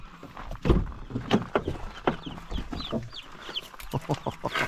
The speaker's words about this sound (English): God, you're so stinking cute. All right, we got chickens. You're so loud, too.